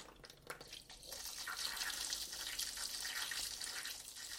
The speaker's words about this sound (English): So I've got my washing up bowl, a little bit of disinfectant, and I'm just going to fill the washing up bowl with some warm water.